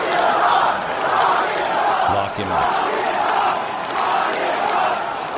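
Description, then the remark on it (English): A huge stadium crowd chants loudly in unison, a rhythmic, repeating slogan rising and falling over a constant roar of cheering voices that fills the whole space. “So I think the president was probably thinking, hey, I can go listen to the crowd reacting when he comes into the stadium.”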